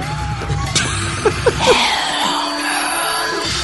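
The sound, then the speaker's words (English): Chaotic, noisy theme music with shrill voices screaming over it and sharp metallic clatters of pots and pans being banged, all loud and jumbled together. “You listen to the music, the screams, and the screams and the banging of fucking pots and pans or whatever the fuck.”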